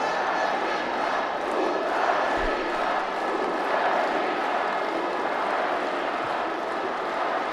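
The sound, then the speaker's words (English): A big football crowd roars continuously, a dense wash of voices cheering and chanting at a steady, loud level for the whole stretch, with no single voice standing out. “as you can hear, the crowd are still giving it everything.”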